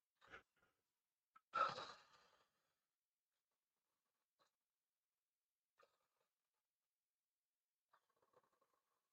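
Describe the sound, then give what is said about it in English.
During a timed breathing exercise, a deep breath rushes out once, preceded by a short intake, then near silence with a few faint ticks and small mouth sounds. No one speaks. “I'm starting the timer and we're going to start breathing.”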